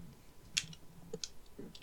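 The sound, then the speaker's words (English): A handful of soft, irregular keystrokes on a computer keyboard, spaced unevenly over a quiet background with a faint low hum. No one speaks. “Yeah, you've been typing so...”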